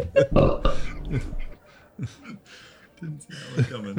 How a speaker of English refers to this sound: Was that a belch?